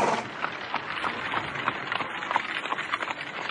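A horse-drawn dog cart rolls along a road and pulls up, with hooves clopping in a steady, fairly quick rhythm over a continuous rattling rumble of wheels, moderately loud, with no voices.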